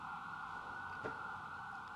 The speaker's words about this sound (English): Oh my God, those sirens are so loud.